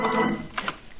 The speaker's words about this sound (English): He does not know visitors are waiting for him in his office. He opens the door.